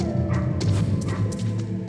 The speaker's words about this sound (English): Dog just fucking chewing on me.